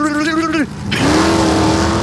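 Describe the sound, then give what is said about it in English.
A voice imitates a drag race car launching: a loud, buzzy engine drone that sags in pitch, cuts out briefly, then roars back at a steady, sustained pitch. “A drag race car doesn't sound like zoom.”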